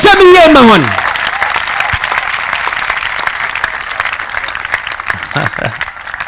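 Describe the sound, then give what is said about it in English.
A crowd in Biriwa claps for the pastors and men of God present, a steady, sustained burst of applause, with a voice calling out briefly over the start and a few voices rising near the end. “Clap for them properly.”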